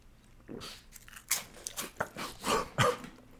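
Crisp crunching from someone biting into and chewing a garlic and herb cracker, a series of sharp, bright bursts with short pauses, growing louder toward the end, with no talking.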